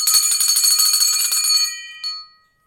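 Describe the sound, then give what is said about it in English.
A metal tugboat bell, being tested, rings rapidly for about a second and a half, a fast clanging trill with bright sustained overtones, then one final strike that rings out and fades. Loud, no voices. “It's a really solid bell. It's a good bell, actually, yeah. Well, it's a good tugboat bell.”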